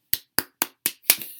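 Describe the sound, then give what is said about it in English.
Five sharp hand claps in a steady, quick rhythm, celebrating a football team earning a first-round playoff bye, the last one louder with a brief trailing rustle; no one speaks. “Clap for that.”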